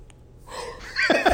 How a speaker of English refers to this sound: I'm trying not to yawn so much.